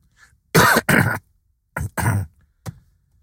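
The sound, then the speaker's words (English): A loud coughing fit: two harsh double coughs in quick succession, followed by a short, softer cough, with no talking around them. “Damn, that was a cough. That was a hell of a cough right there.”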